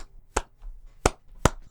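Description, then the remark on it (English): Three sharp, bright hand claps spaced unevenly apart, a slow deliberate clap with quiet gaps between each strike and no talking. “Slow clap!”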